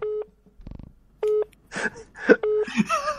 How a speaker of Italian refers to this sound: Stanno usando il sistema a fischio, occhio. XP dispositivo a fischio. Dispositivo a fischio. Occhio, attenzione.